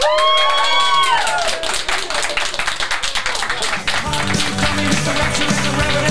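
A crowd claps loudly and steadily while people cheer, with high whoops and whistles rising over the dense applause at the start, and a low, steady tone joining in near the end.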